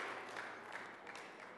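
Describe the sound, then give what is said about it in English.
An audience applauds in celebration of the grace of God, many hands clapping together in a dense, steady wash of crisp claps that holds an even loudness throughout, with no voices over it. “That's another clapping moment.”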